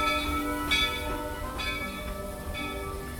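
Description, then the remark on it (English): A train rolls by with a steady rumble, its bell ringing in repeated clangs about once a second over a sustained metallic tone. “There's the train.”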